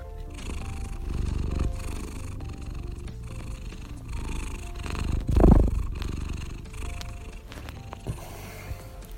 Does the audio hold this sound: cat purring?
yes